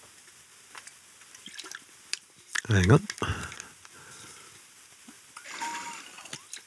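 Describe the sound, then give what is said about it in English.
A voice speaks briefly, then water is poured and sipped, a short wet burst of liquid followed by a few quiet slurping, dripping sounds. “Just going to get a sip of water.”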